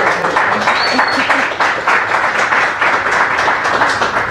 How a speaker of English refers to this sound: Thank you for taking the time. And maybe a round of applause for...